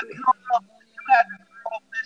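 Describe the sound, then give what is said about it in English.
Choppy, thin telephone-quality voice audio cuts in and out in short bursts with abrupt gaps, a call breaking up because of a caller's faulty headphones. “Your phone breaking up.”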